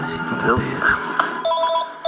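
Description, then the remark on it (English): A telephone rings with a bright, steady electronic trill near the end, clear, following a short stretch of indistinct voice-like sound, in a video on the Star Wars YouTube page where Warwick Davis sits in his office waiting for a call from the makers of Star Wars. “He's got a beard because he's been sitting in his office waiting for a phone call off the people who make Star Wars.”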